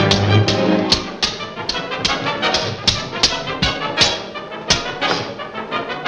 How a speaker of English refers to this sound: It's like you're hearing two sword fights at once, but there's no sense of a dissonance between them. They support each other in exactly that way you're describing.